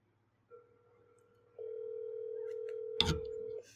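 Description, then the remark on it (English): A phone line rings as a call to ARP is made live on air, then goes to voicemail: a steady electronic tone holds for about three seconds, quiet at first and then louder, with a brief click near the end. No one speaks. “I'm finna call ARP, man. Live on air.”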